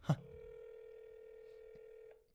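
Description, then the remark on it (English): A short click, then a single steady electronic ringback tone from an outgoing phone call to a friend holds evenly for about two seconds before cutting off. No one speaks. “This is a friendship test to see if he actually is going to answer my phone.”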